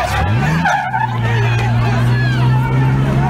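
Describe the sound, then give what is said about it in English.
A crowd shouts and yells loudly and continuously at a Trump supporter in a truck, over the steady drone of a running vehicle engine, with agitated voices overlapping throughout. “They're screaming at the Trump supporter in the truck.”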